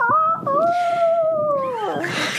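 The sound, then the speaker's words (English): A person imitates a rooster's crow with a voice: a short opening note, a brief break, then a long, steady, high-pitched held call that drops and trails off at the end. “Is that what you think a rooster sounds like?”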